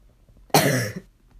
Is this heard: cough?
yes